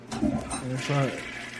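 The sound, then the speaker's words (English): A toilet flushes with a steady rush of running water while a muffled voice speaks over the noise for a moment. “It still goes up when I flush it.”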